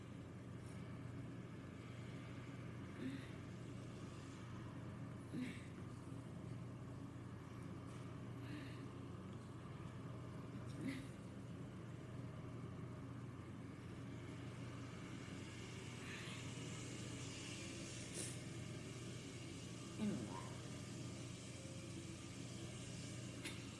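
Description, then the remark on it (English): A steady, droning engine hum of a racing car in a video game played on a mobile device fills the whole stretch, with a few brief higher whines and clicks rising and fading over the continuous motor rumble. “Okay, this car is crazy.”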